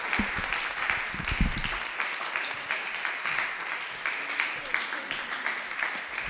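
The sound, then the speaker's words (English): A crowd at a comedy show applauds steadily for several seconds after a comic's set, a dense, even patter of many hands clapping, with a brief burst of louder low rumble near the start. “Hey, another round of applause for him, huh?”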